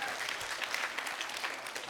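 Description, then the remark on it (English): An audience claps steadily, a dense, even patter of many hands with no pauses, holding a fairly consistent moderate loudness throughout. “If my wife were here, you should really be applauding her.”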